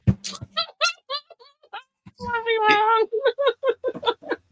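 A cat meows: a quick run of short chirpy meows, then one long, drawn-out wailing meow, followed by several more brief meows in succession.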